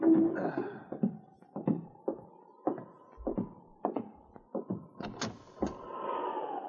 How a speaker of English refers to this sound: But one night, as he sat alone in his cabin on Hunker Creek, he heard an ominous knocking at the door. And somehow he knew, even before he answered the knock, that the past had caught up with him.